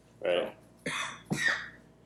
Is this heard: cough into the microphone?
yes